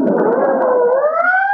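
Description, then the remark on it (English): A loud ambulance siren wails, its steady tone slowly dipping and then rising again in one continuous sweep, with no voices over it. “There goes another ambulance.”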